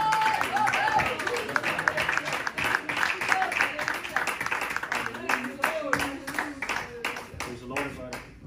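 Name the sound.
audience clapping hands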